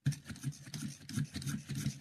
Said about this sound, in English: Yeah, you heard that. That is the crank pencil sharpener, the old Boston. Just using it, getting it ready, and getting my pencil ready to jot this down.